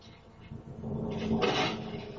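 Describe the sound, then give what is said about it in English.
Metallic rattling and scraping as a door lock is worked, with a louder burst of handling noise midway over a low background rumble; no one speaks. “Is he unlocking or locking shit?”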